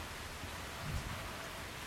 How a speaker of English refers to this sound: Oh, that's the rain. Sorry. Yeah. It's about 6 miles away. Yeah. It's getting closer.